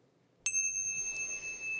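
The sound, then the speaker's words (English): A single bright bell strike rings out clearly and sustains with a long, shimmering decay through the rest of the moment, with no voices present. “So I guess I better hit that bell and get you guys right into the episode.”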